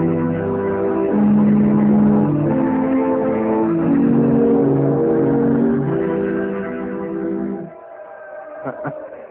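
A car engine revs and accelerates, its droning pitch stepping up through several shifts for about eight seconds before cutting off abruptly, leaving a faint hum and a few soft clicks.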